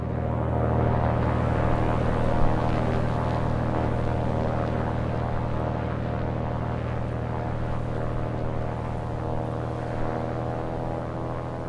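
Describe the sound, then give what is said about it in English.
A propeller aircraft's engine drones steadily and loudly at the Santa Maria Airport, a constant buzzing hum with a deep rumble that holds its level throughout, with no voices. “I'm your host, Tom Wilmer, reporting from the Santa Maria Airport.”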